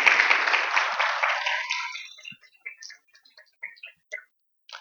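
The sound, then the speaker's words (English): A burst of dense applause from a church audience on a Sunday morning, clapping for a worship leader, that steadily thins out after about two seconds, leaving a handful of scattered, isolated claps trailing off before it falls silent. “So you can clap for her.”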